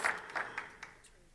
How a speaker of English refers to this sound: Somebody clap your hands and say that's right.